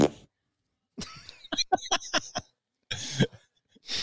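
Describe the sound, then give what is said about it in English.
A cartoonish fart sound effect plays from a soundboard: a run of sputtering, rapid bursts lasting about a second, followed by a couple of short noisy blasts, loud with no talking. “Or do Yoka's and then the fart.”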